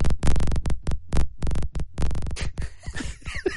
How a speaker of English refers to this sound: And that's it. That's the only sound. Wait, there's a crackling sound effect on old PC? I know, right? It sounds like... Wow, that game is perfectly replicating the sound of a phone going off during a podcast. A silent phone.